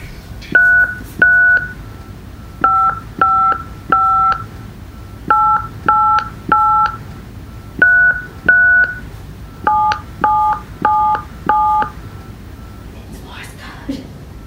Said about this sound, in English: the tape recorder has the faint sound of a phone dial tone